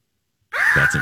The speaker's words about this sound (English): Really not an eagle, but that's what we want the eagle to sound like. Yeah. So, yeah. It's actually a hawk.